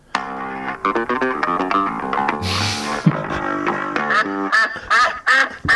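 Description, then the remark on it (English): A rapid, loud series of nasal duck quacks, continuous, with a brief hissy burst partway through before the quacking carries on to the end. “It's like a little duck.”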